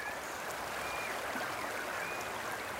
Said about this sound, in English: The sound of water running over the rocks in a stream.